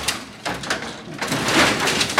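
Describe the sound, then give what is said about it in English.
A robotic extruder whirs and hisses steadily while printing plastic for a light, its motor noise broken by short scraping bursts that swell louder toward the end. No one speaks. “But it's a trooper. It just goes and goes. So this one is, it's now extruding lights.”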